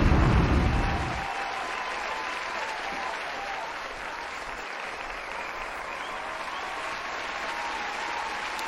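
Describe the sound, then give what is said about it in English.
Sustained audience applause, a dense wash of many hands clapping at a steady level for several seconds, slightly louder at the very start, with no one speaking over it. “I gotta get my applause. I ain't gonna say nothing until they finish.”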